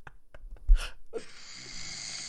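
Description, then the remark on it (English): A man snoring: a short snorting breath, then a long, rough, rattling snore that drones steadily to the end, with no talking. “Is that snoring? What? This is my husband.”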